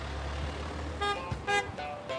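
A bus rumbles along the road with a low, steady engine drone, then several short horn toots sound in quick succession; the bus is carrying players to the All-Ireland Club Camogie Final in Dublin.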